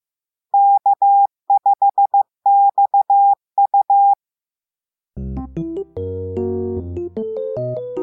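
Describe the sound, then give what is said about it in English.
An amateur radio operator's call sign tapped out in Morse code (CW): a clear, steady mid-pitched tone keyed into short and long beeps across four quick groups, heard alone, then music begins. “The reason I chose my call letters was because they sound so cool on CW, on Morse code, which I do a lot of.”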